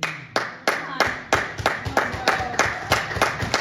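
A single person claps steadily, about three sharp claps per second, roughly a dozen in a row, each crisp and evenly spaced with a faint murmur beneath.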